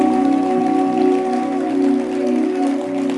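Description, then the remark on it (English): An audience in a church claps hands in a dense, continuous patter like steady rain, fairly loud throughout, with sustained organ-like tones humming underneath and no voices. “Let your hand clap.”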